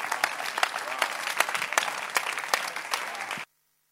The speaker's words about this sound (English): Keep clapping. Let's clap for our Bishop. Bishop, God bless you for these powerful words.